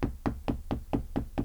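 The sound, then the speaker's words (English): Steady, rapid knocking on a door by neighbours at 3 a.m.: seven dull, evenly spaced raps in quick succession, fairly soft, with no voices. “Knocking on each other's doors at 3 a.m.”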